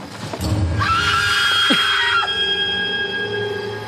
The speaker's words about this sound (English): So listen to this scream.